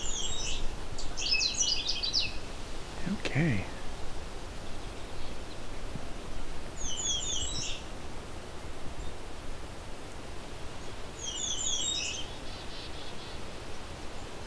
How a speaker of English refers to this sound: I believe this is a Canada warbler. It was a very short version of the song. We're in the right kind of territory.